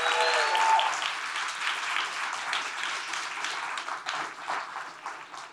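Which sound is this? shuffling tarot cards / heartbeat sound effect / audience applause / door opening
audience applause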